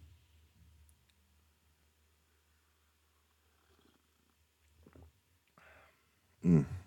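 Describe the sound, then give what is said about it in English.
A soft, brief slurp of a hot cardamom drink being sipped, followed at once by a louder, short throaty sound, over a low steady hum in otherwise quiet surroundings. “And so I'm going to take one more little sip.”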